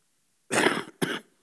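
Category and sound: human body sound, cough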